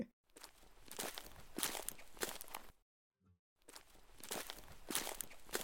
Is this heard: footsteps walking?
yes